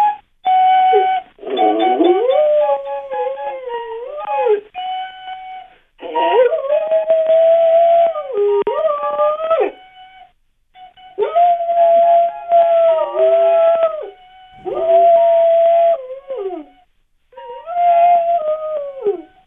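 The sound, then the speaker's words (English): A dog howls along with a recorder playing a simple tune, its long wavering howls rising and falling in several loud bursts with short pauses between them. No one speaks. “Is it possible that your dog is providing commentary on the songs you're playing?”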